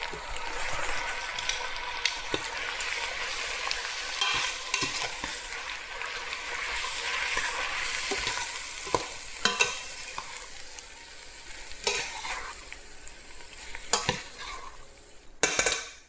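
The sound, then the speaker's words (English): Pasta is added to a hot pan with pesto and oil and is tossed and stirred, a steady sizzle underneath with repeated scraping and clinking strokes, fairly loud, with a sharper clatter near the end. No one speaks. “And I'm gonna add my pasta in.”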